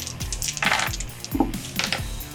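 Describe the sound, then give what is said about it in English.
A handful of dice clatter and tumble across a hard tabletop, a quick burst of bright rattling impacts that comes in several loud bursts before settling. “That's a lot of dice.”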